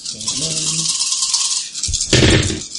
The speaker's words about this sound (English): So I'm going to use a willpower. All right. To get three more dice. So I'm rolling nine dice now.